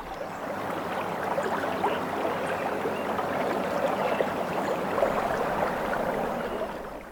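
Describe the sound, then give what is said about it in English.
A steady stream of water trickles and babbles over pebbles, a continuous busy splashing texture with no pauses and no voices. “The trickling over the pebbles is tranquil.”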